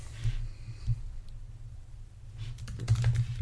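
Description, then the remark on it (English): Computer keyboard typing: scattered key clicks at first, then a quick, dense flurry of taps toward the end, over a steady low hum. “Smiling and typing.”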